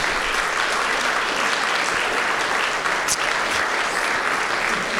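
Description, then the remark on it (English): An audience applauds steadily, dense clapping filling the whole stretch at an even, fairly loud level with no voices rising above it. “But just would you give a round of applause and appreciation of all that they do all year?”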